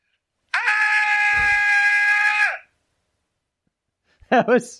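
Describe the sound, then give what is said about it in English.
A man lets out a long, loud, sustained mock death scream, as if being killed, lasting about two seconds, held steady before cutting off, followed by silence and a brief burst of another voice. “Like, if I heard you scream that long, like, when you started out, I was like, no,”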